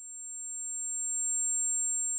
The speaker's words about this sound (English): Hi, my name's Jeff, and this is my tinnitus.